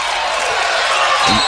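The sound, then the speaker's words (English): A loud, sustained crowd roar at a basketball game involving Batesville and the Bulldogs, reacting to an out-of-bounds call, a dense wash of cheering that stays at full volume throughout, with a brief ball bounce or thump near the end. “That roar from the crowd was they said it was going to be Batesville ball when clearly Batesville touched it last, but they corrected it to the pleasure of his home crowd.”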